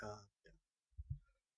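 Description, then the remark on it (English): A person lets out a short, voiced yawn with a breathy, tonal sigh, followed by a brief murmur and a few soft, low thumps. “Ooh, yawning.”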